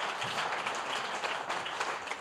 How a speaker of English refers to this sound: Give our friends from Toronto, Ontario a big hand clap. That's awesome.